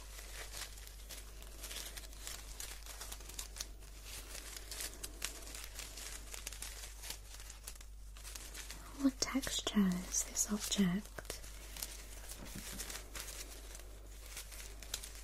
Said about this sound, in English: It was a tangled tape measure.